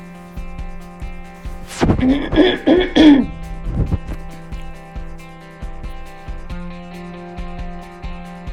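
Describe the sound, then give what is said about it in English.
Someone clears their throat in a few rough, gravelly bursts lasting about two seconds, followed by quiet with a steady low hum in the background. “I'm going to have to clear my throat.”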